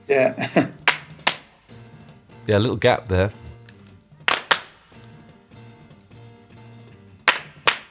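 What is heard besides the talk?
hand claps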